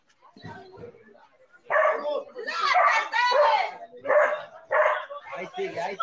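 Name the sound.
dogs barking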